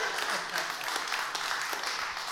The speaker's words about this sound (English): You can clap if you want. That was a good point.